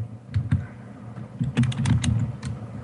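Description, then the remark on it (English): Rapid, uneven typing on a computer keyboard close to the microphone while looking up an actor's Bacon number, a flurry of sharp clicking keystrokes with brief pauses, fairly loud and with no voices. “You're typing loud over the microphone.”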